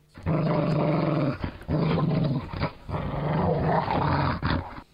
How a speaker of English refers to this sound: As she approaches the threshold, a low growl emanates from the back of the room.